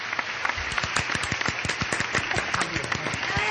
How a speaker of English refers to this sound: Oh, gosh, I have applause just for this.